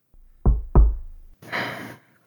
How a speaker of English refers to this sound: Knock on the wall if you're alive at least.